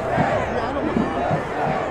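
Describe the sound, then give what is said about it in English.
A large outdoor crowd of protesters on the grounds of the Capitol, shouting and clamoring together as barriers are pushed past. It is a dense, continuous roar of many voices at steady loudness with no clear individual words. “It felt like the crowd was turning into a mob.”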